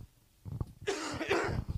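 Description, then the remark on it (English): A person coughs twice in quick succession, harsh, after a brief quiet moment. No talking is heard. “May have to get a cough drop”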